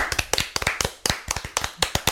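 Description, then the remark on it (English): A few show hosts clap together after a three-two-one countdown, a quick, uneven burst of sharp overlapping claps, fairly loud and steady for about two seconds, with no talking. “three, two, one, clap.”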